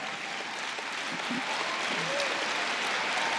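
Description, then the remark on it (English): A crowd claps steadily throughout, a dense wash of many hands applauding at an even, fairly loud level with no voices standing out. “You know, your hand clapping, there's pain in it.”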